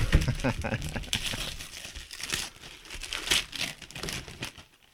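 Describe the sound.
Paper crinkles and rustles steadily as a paper-wrapped gift, a copy of the book Surely You're Joking, Mr. Feynman, is carefully unwrapped, with sharper crackles and brief tearing sounds scattered through, and faint voices murmuring underneath.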